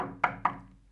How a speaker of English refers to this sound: The two men stop at a huge oaken door banded in black iron, and the servant knocks.